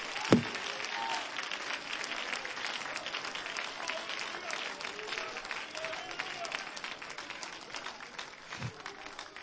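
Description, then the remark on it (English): A crowd claps steadily throughout, a dense, sustained wash of many hands at moderate volume, with a few louder thumps near the start and end and faint voices mixed in. “Somebody ought to be clapping.”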